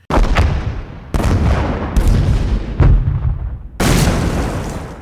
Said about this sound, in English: And the one piece of upgraded military arsenal that will haunt the troops for the entirety of the war? Artillery.